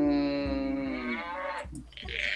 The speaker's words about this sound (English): And the cow in the background. I heard that.